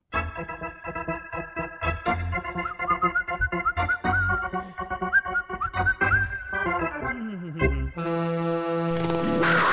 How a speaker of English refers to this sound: Before we get to headlines, give me a little ice hockey sound, Solana.